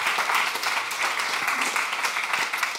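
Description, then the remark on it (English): Steady applause from an audience welcoming a speaker at a Long Now talk at the Interval, a dense wash of many hands clapping at a constant level with no voices standing out. “Let's give him a round of applause and hear what he has to say.”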